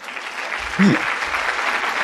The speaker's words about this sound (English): Please clap.